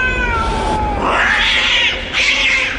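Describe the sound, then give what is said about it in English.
A cat whose tail has been trodden on lets out a loud, strained yowl that rises into a shrill, wavering screech, continuous for a few seconds with no talking. “Someone trod on a cat's tail.”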